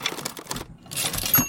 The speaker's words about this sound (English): The only other soul in the room was a 60-something secretary who sat pecking away at an old manual typewriter.